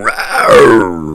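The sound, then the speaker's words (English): A man lunges and lets out one loud, beastlike growl, a harsh voiced snarl that slides downward in pitch for about a second before trailing off. “Suddenly, this man, who was sitting calmly seconds before, now lunges at the guest. He growls.”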